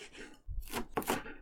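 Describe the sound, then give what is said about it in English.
Thistle stems being loosely chopped with a knife, handled bare-handed without a glove, a low thump followed by two or three crisp cutting strokes in quick, uneven succession. “So I'm just loosely chopping these, getting a little bit of pricks here.”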